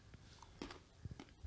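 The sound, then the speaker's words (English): Wet chewing with a few crunchy bites in an irregular rhythm, fairly quiet and heard on its own without any talking. “Yeah, this was chewing. It's fucking gross.”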